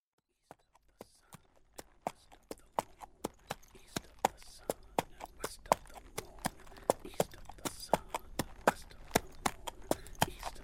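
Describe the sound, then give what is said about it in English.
Horse hooves clip-clop in a steady, crisp rhythm on a hard surface, the sharp knocks growing quicker and a little louder as the horse picks up pace, with faint background noise. “Now get on the horse!”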